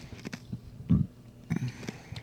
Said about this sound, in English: Ooh! That burp. I know. That burp.